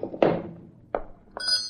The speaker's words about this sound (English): Until 2 days before Christmas, when someone pulled the old-fashioned bell on my door.